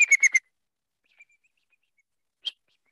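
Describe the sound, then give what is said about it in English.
A person imitates a bald eagle's call with a quick burst of four stuttering whistled notes that step slightly downward, then pauses before one more short, sharp whistle. The sound is clear. “So one of the most common noises we hear from a bald eagle is kind of like this downward little stuttered whistle, like a, let's see, hold on.”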